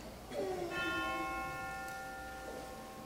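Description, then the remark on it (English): A single memorial chime is struck once after a name is read during an audience's remembrance of the dead, ringing on with a clear, sustained bright tone that slowly fades over a few seconds, following a brief trailing voice at the very start. “After I read, there will be a chime for each name.”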